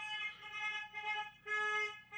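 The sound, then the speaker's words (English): Car horns honk in the street in a series of loud, brassy, overlapping blasts, a few short toots followed by a longer sustained honk near the end, with no talking. “Random honking.”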